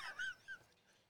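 A bird calls inside a house with two short, faint, high chirps in quick succession, the second a little softer, with no one speaking.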